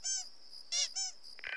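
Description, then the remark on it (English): A soft, fluffy squeaky plush bunny toy is squeezed three times, giving sharp, high-pitched squeaks with a thin whistle lingering between them, then a brief rustle as the grip eases. “The object emitted a squeaky sound when squeezed.”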